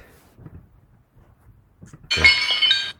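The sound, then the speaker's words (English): A glass shattering sound effect bursts in suddenly after a stretch of near-quiet, a loud crash followed by bright, ringing tinkles of shards that fade out within a second. “What was that? Shatter that glass ceiling, mama.”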